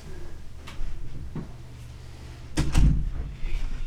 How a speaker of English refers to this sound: Let me just close the door 1 minute.